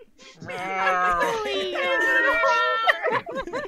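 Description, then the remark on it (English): A cat meows in a long, drawn-out, wavering cry, loud, followed by a few shorter chirping mews near the end. “I hear a cat.”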